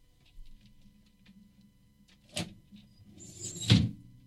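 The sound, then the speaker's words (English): A cable catches on a recently installed metal filing cabinet drawer: a sharp knock, then a short scraping rattle that ends in a heavier clunk, with no talking. “Got my cable caught there. I recently installed some drawers.”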